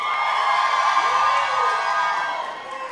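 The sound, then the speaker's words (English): A crowd of audience members, the singles in the house, yells and whoops together in a loud, sustained burst of shouting that lasts a few seconds before starting to fade, with no single voice standing out. “So based on the tone of that yell, it was... What happened? The singles ain't playing right now.”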